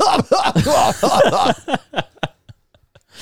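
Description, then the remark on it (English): A voice imitates a man coughing while trying to eat his food: a run of strained, voiced hacking bursts, followed by several shorter, quieter coughs spaced out and tapering off. “And he's, you know, trying to eat his food. So he's coughing.”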